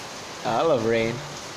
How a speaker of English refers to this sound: I love rain, but there's like a sad atmosphere with rain. I know, it's raining. I think there's some typhoon and stuff. Yeah, it's raining.